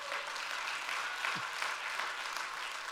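An audience claps hands together in praise, in a steady, dense wash of applause that continues throughout without pause, moderately loud, with no talking over it.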